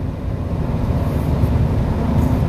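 A steady, dense rumble of road traffic on a smoggy day fills the whole stretch, low and continuous with no distinct pauses or voices, like a busy roadway.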